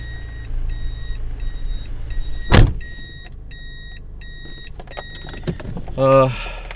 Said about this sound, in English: Sorry, I'm just parking my car here.